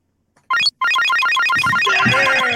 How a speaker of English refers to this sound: Okay. Are we all ready for the final buzzer? Yep.